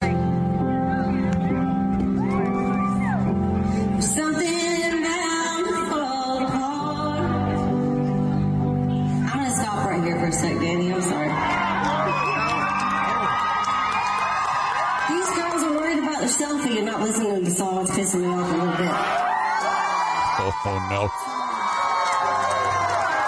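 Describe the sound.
A concert crowd cheers and whoops loudly and steadily for over twenty seconds for a female singer on stage, with shouting voices and brief spoken words rising through the roar.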